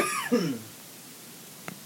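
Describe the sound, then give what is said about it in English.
A close, loud cough right up against the microphone, a harsh burst with a throaty rasp in its tail, followed by a brief faint click and then quiet. “Sorry for coughing directly into the mic.”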